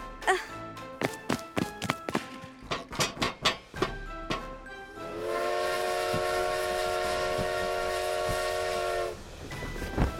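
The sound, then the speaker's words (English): A train clatters along the rails with a quick run of sharp clacks, then a long, steady whistle blows for several seconds before the rumble returns. No one speaks. “Oh, we're on a train!”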